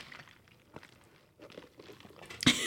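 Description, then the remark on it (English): Close, wet mouth noises of someone gulping right at the microphone, a string of soft swallows and smacks ending in one loud, sharp gulp near the end, with no talking. “gulping into the microphone.”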